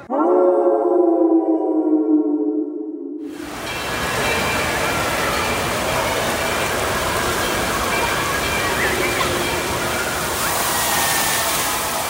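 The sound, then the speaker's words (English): A shrill, whining tone holds for about three seconds, then gives way to a loud, steady roar of gushing water echoing through an indoor water park at about 85 decibels, with faint crowd murmur. “It's an indoor water park. The gushing and whining come in at an eardrum-piercing 85 decibels.”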